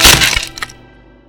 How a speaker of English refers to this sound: Time crawls to a standstill as the sickly gray wood of the staff splinters apart and you see countless magical reactions shoot off at once.